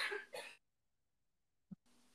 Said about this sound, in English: She's still making noise. Like the first 8 or 9 coughs, I'm like, oh, okay, that's it. And then, yep, there we go again. There it is. It's not COVID. She's just fucking ill.